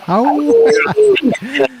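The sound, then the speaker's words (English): Several short, loud howls in quick succession, each a wavering tone that rises and falls in pitch, filling nearly two seconds with brief gaps between them. “We got some howls.”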